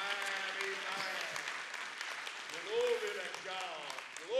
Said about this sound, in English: Somebody clap your hands one more time this morning.